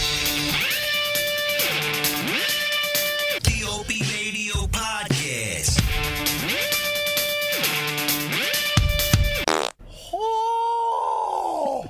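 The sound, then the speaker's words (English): A long, loud, buzzy 'skunk fart' noise made by Opie of Opie Radio at a show, from his TikTok page, with a wavering pitch that stretches on for several seconds, repeats, then ends with a brief higher squeaky blast. No one talks over it. “Skunk fart.”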